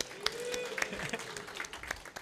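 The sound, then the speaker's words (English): A crowd claps and cheers together at the mention of the name Mordecai, as readers of the book would: irregular, overlapping handclaps with whoops and shouting voices mixed in, a short, lively burst that keeps going the whole time. “What you guys just did at the end of that, though, clapping and cheering, as the reader would read the book, anytime they mentioned the name of Mordecai, let's try.”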